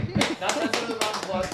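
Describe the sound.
A short burst of applause, sharp claps landing at an uneven rhythm over about a second and a half, with voices murmuring and calling out underneath.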